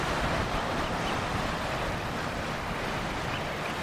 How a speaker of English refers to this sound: So just on a little rocky headland, a great swathe of the Irish Sea in front of me. And you can hear the waves down below.